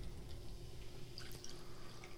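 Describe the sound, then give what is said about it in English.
Tonic water is poured into a glass over cherry-flavored vodka, a soft steady trickle with faint fizzy crackles and a few bright drips, fairly quiet, with no one talking. “And then now, here we coming in with tonic water. A little tonic.”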